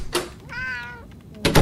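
A single drawn-out, clear cat meow sits between two short, sharp thumps, one just before it and another right after.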